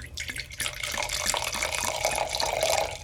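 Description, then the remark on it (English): Wine poured steadily into a glass, a continuous splashing gurgle whose pitch rises as the glass fills, lasting about three seconds with no voices. “I hope you can hear the pour.”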